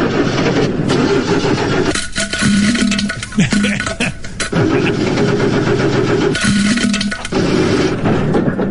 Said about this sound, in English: it sounds like something rolling around in the motor's come loose